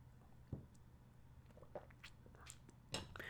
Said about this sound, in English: So I'll sip to that.